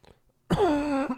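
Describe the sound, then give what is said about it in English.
A short silence, then one loud, harsh cough into a microphone that bursts out abruptly and trails into a rough, voiced throaty rasp lasting over half a second, with no talking. “So, stop coughing into the mic.”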